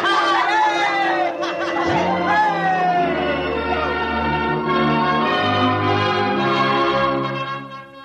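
The bells of the Baptist, Congregationalist and Roman Catholic churches peal together loudly and continuously, their overlapping ringing tones filling the scene, while a crowd chatters and cheers beneath them, celebrating a safe return from the first trip to Mars.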